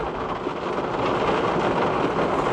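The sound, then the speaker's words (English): Heavy rain pounds steadily on a car, a dense, loud wash of hissing and drumming with no breaks and no voices. “This rain is something else. I've never seen rain this bad.”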